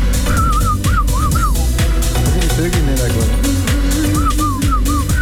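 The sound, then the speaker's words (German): Birds chirp in two short bursts of high, warbling, whistle-like notes, one at the start and one near the end, over a loud, steady low rumble with murmuring voices. “Vögel sind schon am Zwitschern.”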